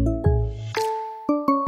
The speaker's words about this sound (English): It's time to hear the chime, because it's time for 5 Fantastic Things to Watch This Weekend